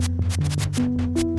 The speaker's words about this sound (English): There's our white noise.